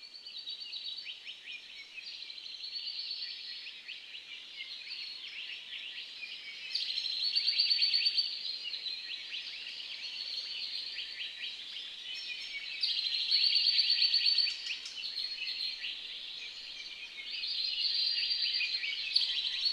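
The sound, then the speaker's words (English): Ambience recorded in the middle of an ancient forest, an island of biodiversity not run over by lava, filled with continuous birdsong, many birds chirping and trilling together in a steady chorus, swelling louder in a few stretches, with no voices. “So you get this ancient forest, really like an island of biodiversity. And so I went into the middle of this and, yeah, I hit record, and it was my first ever professional recording, and so it's really special to me.”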